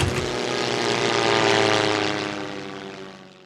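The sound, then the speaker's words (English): A propeller airplane engine drones steadily with a rich, buzzing harmonic hum, swelling slightly in the middle before fading over a few seconds. “Now land this plane.”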